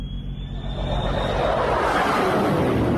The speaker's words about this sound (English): Even bigger waste happens when the military buys exotic new weapons like this F-35 fighter. It, like many planes and ships, is billions over budget.